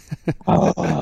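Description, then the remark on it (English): A man growls and roars in imitation of a tiger: a few short throaty grunts build into a loud, sustained, raspy roar, with no other talking. “You are going to be a powerful tiger.”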